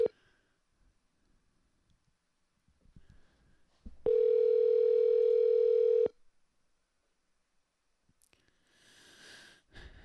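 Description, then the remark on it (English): A loud, steady telephone tone hums for about two seconds, preceded by faint clicks and handling noise, then a soft hiss of an open line follows. “Is this the cream cheese guy phone call?”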